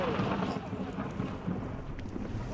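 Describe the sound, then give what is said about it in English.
A deep, continuous thunder-like rumble of glacier ice cracking rolls on steadily without a break, heavy in the low end and sounding like dynamite, with no voices. “and then 5 seconds later, or it seemed like a long time, this humongous thundering sound happened. Can you hear the ice cracking over here?”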